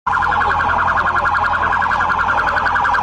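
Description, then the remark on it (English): A loud, continuous siren wails steadily throughout, its warbling tone unbroken, with no voices present. “We'll go ahead and just mute that. We don't need to hear the fucking sirens.”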